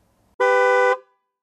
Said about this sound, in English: The other driver began to honk his horn incessantly.